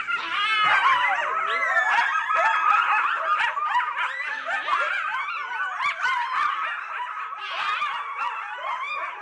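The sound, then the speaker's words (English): A chorus of coyotes howls and yips together, many overlapping wavering, high-pitched calls rising and falling continuously, loud throughout with no talking. “They have this whole range of sounds, and especially at night, if they're out there howling and yipping, they can get each other going, and it can sound very spooky.”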